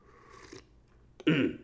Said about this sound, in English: Let me take a sip of coffee here, because I'm an alcoholic. I drink coffee now.